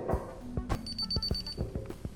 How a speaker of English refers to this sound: Well, I gotta shut off the alarm.